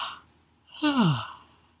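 A single big yawn: a breathy intake followed by a long voiced exhale that slides downward in pitch and fades out. No one is talking.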